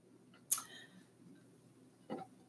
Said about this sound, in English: Sip of water. Hold on. Sorry, guys. I drink water normally throughout the whole pod, and you guys just don't really know